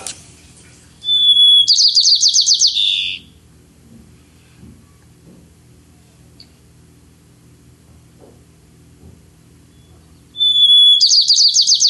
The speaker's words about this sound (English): Listening to the white-crowned sparrow. See if we can hear their song. Here we go. This is the white-crowned sparrow. And it's a neat song.